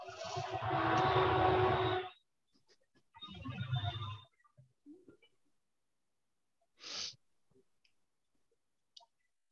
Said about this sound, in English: Oh, there's a train. Hang on.